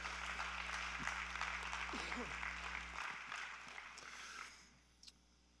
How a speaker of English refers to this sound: And I'm so glad that you made it to church the first Sunday of the year. Why don't you give yourselves a round of applause?